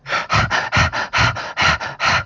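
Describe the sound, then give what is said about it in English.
A person imitates their dog Tito panting: about ten quick, breathy huffs in a steady, rapid rhythm, loud and harsh, with no talking. “I'll pretend to be Tito.”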